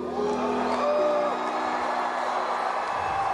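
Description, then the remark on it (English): A crowd cheers steadily for a few seconds at a man speaking on stage, a dense roar of many voices with a few higher whoops rising out of it early on, holding at a fairly even loudness throughout. “but why would you cheer that?”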